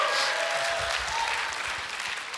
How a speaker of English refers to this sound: We've been married for almost 18 years now. I feel like I deserve a little more applause than that. I mean, come on.